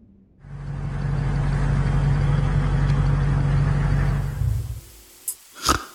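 A car engine, overheating, runs with a steady, loud, low rumbling drone for about four seconds, then cuts out, followed by two brief sharp sounds in the quiet.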